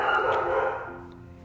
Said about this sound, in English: Okay, so we had some dogs barking in the background. It's completely fine. We're good. It's just the mailman. Yeah, mailman. It happens every time.